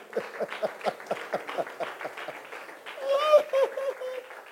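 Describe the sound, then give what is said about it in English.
A church audience claps together at the close of a sermon in a steady, quick rhythm, then raised voices and shouts rise over the clapping toward the end. “And rather clap for such a powerful word.”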